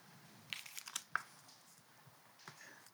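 Scattered crinkling and rustling of paper, a flurry of short crisp crackles from several sheets being handled at once, fairly quiet, with no talking, as people hold up pieces of paper with their prayer requests.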